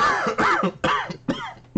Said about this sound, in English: That's the universal cough for you're so correct. Yeah, that is exactly what that translates to.